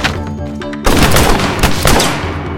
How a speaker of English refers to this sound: I quickly punched him before finding cover for more gunshots.